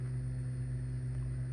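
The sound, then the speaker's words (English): An airplane drones steadily overhead, heard from a back porch, a low, constant engine rumble with a humming tone that holds even throughout, with no voices. “But the plane noise is killing me right now.”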